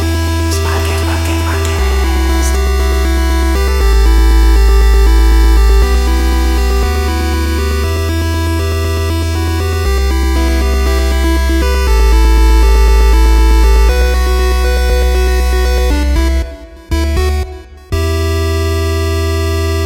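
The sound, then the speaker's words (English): Loud, dense electronic intro music with droning bass and stepping synth chords, swelling with echoing effects and briefly cutting out near the end; no voices. “Wow, echoing effects too.”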